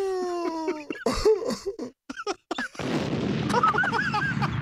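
A cartoonish bomb explosion effect: a few sharp booming bursts, a brief gap, then a long rumbling blast with crackling debris, loud and close, while people's voices and laughter break in over it.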